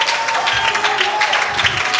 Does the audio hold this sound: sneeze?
no